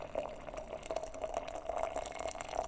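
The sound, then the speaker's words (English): Water pours steadily into two cups for tea, a continuous trickle with a faintly rising, gurgling tone and small splashy bursts, heard alone without any talking. “Anyway, pour 2 cups.”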